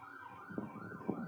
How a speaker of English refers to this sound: I just got a call on my phone and I hear sirens.